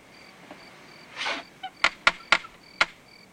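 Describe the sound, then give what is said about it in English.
A man knocks four sharp times on a door, unevenly spaced, following a brief soft rustle, with a faint steady background hum and no talking. “Right before he knocks on the door.”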